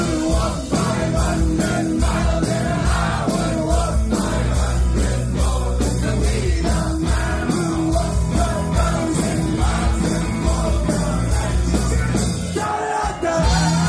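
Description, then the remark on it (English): A rowdy pub crowd yells and cheers over a local band playing loud live music, a steady dense roar of voices and instruments that keeps up throughout. “Rowdy crowd that just got rowdier.”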